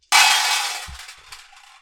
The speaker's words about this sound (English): The story cubes are in my hand. I'm giving them a good old shuffle in me palms.